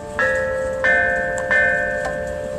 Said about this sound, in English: Archaeologists unearthed a set of bells in China dating back to 5th century BCE. Along with these instruments, they found instructions and writings describing a notational system.